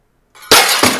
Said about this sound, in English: Nick, somebody smashed the window.